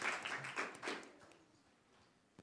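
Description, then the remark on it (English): A short burst of applause for Esther Waring, a quick patter of clapping that rises briefly and then fades away to near silence within a couple of seconds. “Oh, and just while I mention, Esther Waring created both videos, and she is an absolute wizard at these things, so she deserves a big round of applause.”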